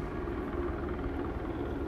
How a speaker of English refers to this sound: I'm curious what this helicopter is doing. He's just kind of sitting there. That's intriguing. He's just sitting there.